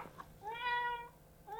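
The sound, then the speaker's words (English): A pet cat named Claire lets out a drawn-out, wavering meow, followed by the start of a second meow a moment later, clear with no one talking. “She's one of our kitties.”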